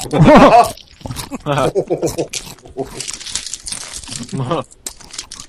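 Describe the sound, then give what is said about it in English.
Crunching of dry, stale bagel snacks mixed with a plastic bag crinkling in noisy bursts, interleaved with a voice talking and murmuring between bites. “They're a little stale, so they're really crunchy.”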